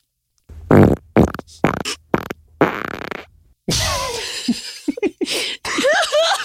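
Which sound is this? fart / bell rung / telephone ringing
fart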